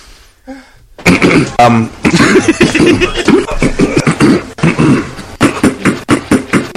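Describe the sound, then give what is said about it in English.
A loud coughing fit from a person who is sick: harsh, rapid coughs and throat clearing follow one another almost without pause for several seconds after a brief quiet start. “I just got a cough, that's all.”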